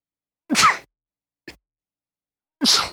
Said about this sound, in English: Hold on, I'm going to sneeze. God bless you.